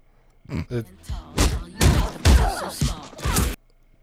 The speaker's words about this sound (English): Okay. Sounds like it's just some punching. It's exactly what the title says it is.